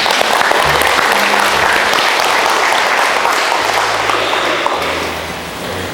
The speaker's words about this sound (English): Yeah, we can clap.